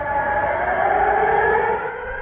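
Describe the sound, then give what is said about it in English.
A loud, sustained air raid siren in Odessa, Ukraine, a city on the Black Sea, wails steadily with layered droning tones, holding its pitch throughout with no break and no voices. “Interrupted from time to time by sirens and a recorded voice, "Dear citizens, take cover."”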